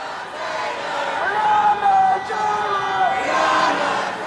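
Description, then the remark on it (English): A large crowd of protesters in Louisville on Thursday shouts and yells continuously, many voices blending into a loud, steady roar with a few raised, higher cries rising above it. “The crowd of protesters in Louisville Thursday was just as big as the night before.”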